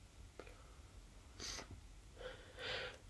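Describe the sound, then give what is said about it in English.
A quick breathy intake of air, then a short, muffled sneeze burst a second later, fairly quiet with no one talking. “Another sneeze!”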